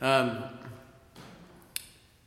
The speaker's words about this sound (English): I always have a backup of the sermon on paper just in case something happens. So I haven't preached from a paper draft for a long time, but anyway, hopefully you'll bear with me as we shuffle.